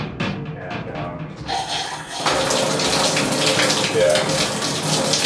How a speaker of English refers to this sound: I don't know if it's gonna pick it up, but I'm going to shower.